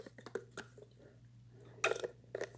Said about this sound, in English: Had to get a sip of water.